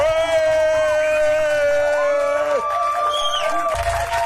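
A group of voices gives a birthday "hip hip hooray" cheer after singing Happy Birthday. They hold a long, drawn-out "hooray" at a loud, steady pitch together for several seconds before the cheer breaks into scattered shouts at the end.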